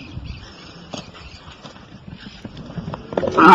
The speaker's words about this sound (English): He took a whole cow to the face. Holy shit. Hold on, let me play it again. Oh! Yeah. He was trying to wrangle a cow